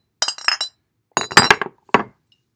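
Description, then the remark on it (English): Glasses clink together in a toast, a quick flurry of bright, ringing taps in three clusters, fairly loud, with no talking over them. “Cheers. Amen. Yes. Cheers.”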